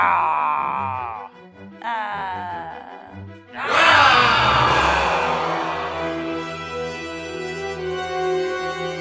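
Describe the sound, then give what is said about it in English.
Several game players imitate a bestial roar with their voices: two short growling moans, then a loud, raspy, layered group roar that bursts out and holds for several seconds before gradually easing. “I'll let out a bestial roar.”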